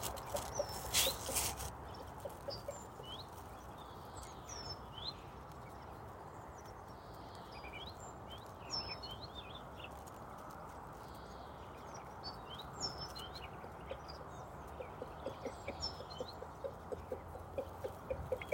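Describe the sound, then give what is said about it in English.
Several chickens cluck softly in an open area, pecking at the frost on the grass, their scattered calls and chirps rising over a steady open-air background, with occasional light tapping sounds toward the end. No one speaks. “The chickens are now happily clucking themselves around in a bit more of an open area, pecking at the frost on the grass.”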